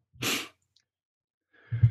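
A short, hissing sniff into the microphone, then about a second of silence before another breathy, lower-pitched nasal sound. No one speaks.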